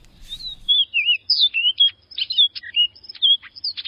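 A songbird of a species seen in the U.S. only in southeast Florida sings a lively string of clear, whistled notes and quick chirps. The song is distinct and repeats rapidly for several seconds, with no voices or other sounds around it.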